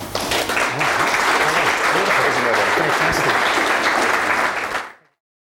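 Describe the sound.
A crowd claps steadily and loudly for about five seconds, a dense wash of many hands, with faint voices murmuring underneath before it cuts off abruptly.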